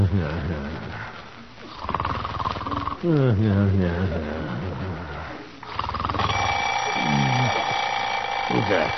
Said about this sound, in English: Alarm. Time to get up and go to work.